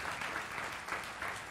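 Steady applause from an audience, a dense wash of many hands clapping at once with a slight pulsing swell, moderately loud and sustained throughout without any voices on top.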